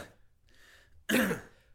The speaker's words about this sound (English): Like even when I was sick last week and you probably still hear some of the cough.